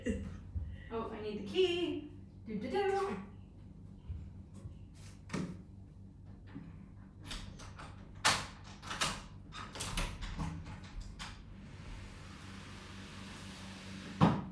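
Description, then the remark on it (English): A person hums briefly, then a run of metallic clicks and clunks as a key unlocks a door, followed by the door opening and a steady wash of air noise. “I'm going to hold that thought and open the door because it's so hot in here, but the air conditioning in this room is super loud.”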